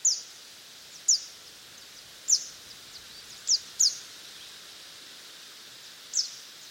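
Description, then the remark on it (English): A mistletoebird gives sharp, high jip calls, six short notes at irregular intervals, a couple in quick succession, ringing clearly over a steady outdoor hiss with no one talking. “And that's that jip call or ju-jip call, which actually tells me where they are first.”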